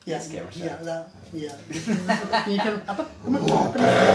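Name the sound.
dog vocalizing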